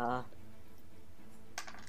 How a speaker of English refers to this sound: Wait, I have my actual dice for this.